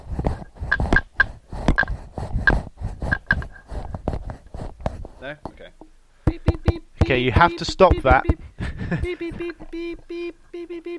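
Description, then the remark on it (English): Loud tapping on a microphone, a rapid string of sharp knocks in an irregular Morse-code-like rhythm, followed by a person speaking over a few more scattered taps. “Sorry, I was just playing with Mike in a way I shouldn't play with him.”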